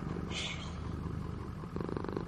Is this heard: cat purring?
yes